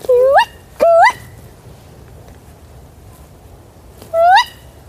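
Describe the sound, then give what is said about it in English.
A person imitates a female owl's call: three shrill, rising 'kee-wick' cries, two close together at the start and one more after a pause, loud with no talking. “Can you do the female? If you do that really loudly... Try it.”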